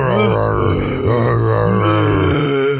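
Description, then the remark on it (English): A person imitates a bear with a loud, low, rasping growl held for nearly three seconds, rising and wavering in pitch, with no words spoken. “I was just going to start growling like a bear is about.”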